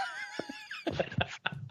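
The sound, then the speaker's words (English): A coughing fit: a drawn-out, moaning tonal sound gives way to several rough, uneven coughing bursts in quick succession, moderately loud, with no talking. “Yep. That's a cough. Yep. That's a coughing fit.”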